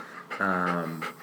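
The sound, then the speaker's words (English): A golden retriever breathes heavily and sniffs close to the microphone, with a brief whiny, tonal breath in the middle of the short burst of panting. No one speaks. “He's a little bit of a heavy breather. He's sniffing the mic.”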